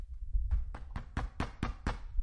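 A quick run of about seven evenly spaced knocks, sharp and fairly loud, rapping over a low rumbling background, with no voices.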